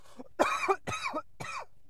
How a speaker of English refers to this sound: I'm the one coughing this time.